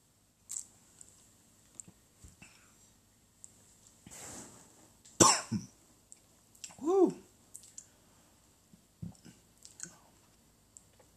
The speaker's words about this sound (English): And that cough and a little bit choke have been brought to you by Four Roses. Four Roses Whiskey.